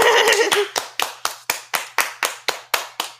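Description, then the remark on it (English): Hands clap in a steady, even rhythm, roughly ten sharp claps spaced evenly apart, with a brief burst of voice overlapping the start. “And all my tests came back negative, so we gonna clap it up.”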